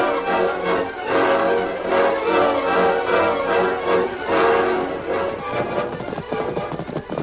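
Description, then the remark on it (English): Hoofbeats of the horse Silver at a gallop, riding to Diablo mine, a fast steady run of clopping that stays loud, blended with a dense, full background sound throughout, with no talking. “Get off your horse.”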